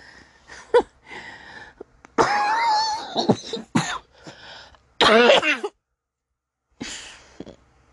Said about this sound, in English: I'm sorry I'm coughing so much, but god damn it.